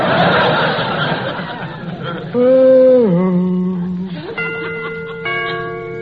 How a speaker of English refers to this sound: Got to remember to get them chimes made softer. No sense in letting the neighbors hear the time for nothing.